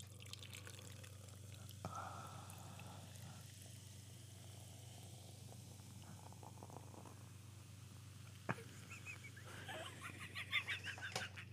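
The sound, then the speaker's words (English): Liquid being poured into a mason jar for drinking, at first missing the jar and hitting the pourer's finger, a quiet trickling and gurgling over a steady low hum, with a couple of sharp glassy knocks and a livelier splash near the end. “We're going to start off the podcast with a pouring ASMR.”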